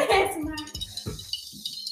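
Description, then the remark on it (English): Glasses of vodka soda clink together in a toast, one bright ringing chime at the start that slowly fades, followed by soft, low voice sounds. “We're having a couple vodka sodas, and it's just a vibe today. So, cheers.”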